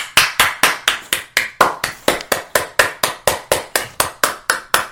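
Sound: applause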